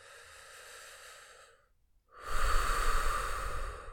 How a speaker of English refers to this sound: Deep and slow breathing.